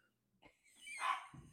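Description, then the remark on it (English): A dog barks, a short yip followed by a longer, rough, drawn-out bark, somewhat muffled. No one is talking. “Stop barking, please!”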